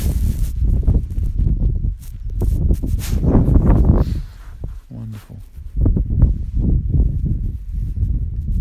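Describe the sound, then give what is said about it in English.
Steady wind gusting and rumbling in low, uneven surges at sunrise amid swirling fine mist, with faint bird calls barely audible down in a valley; a person briefly speaks one word partway through. “Just listening to the wind and the birds off in the distance down in the valley.”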